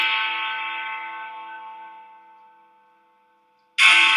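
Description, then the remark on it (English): A sound effect of summoning Big Ben: a bright, bell-like ringing tone fades slowly over about three seconds, a moment of silence follows, then a sudden loud, hissy burst cuts in. No one speaks. “Okay, so we summoned Big Ben.”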